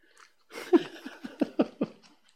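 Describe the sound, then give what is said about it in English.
A heavy female dog pants hard, a quick run of breathy huffs in a steady rhythm lasting a couple of seconds, with no talking over it. “Why are you breathing so hard?”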